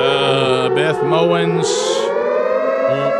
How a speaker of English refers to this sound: Oh, no. Oh, my goodness. Sound the siren.